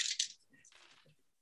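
dice being rolled

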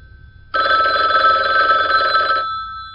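telephone bell ringing

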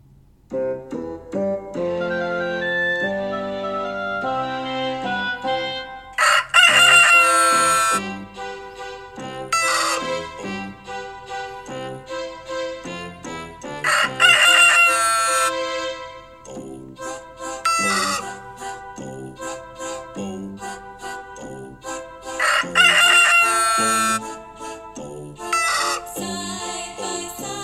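rooster crowing

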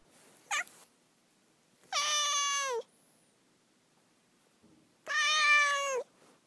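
domestic cat meowing

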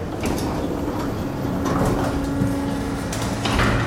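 lift doors sliding open

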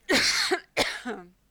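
coughing fit

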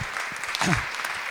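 audience applause

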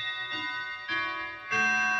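clock ticking and chiming

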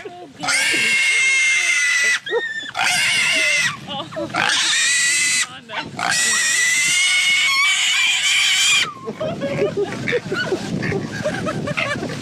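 pig squealing

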